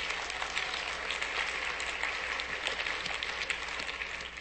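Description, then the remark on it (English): A church audience applauds steadily, a dense wash of many hands clapping at once with no pauses, holding an even level throughout before easing slightly at the end. “Yeah, you can clap.”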